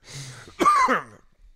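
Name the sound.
coughing and throat clearing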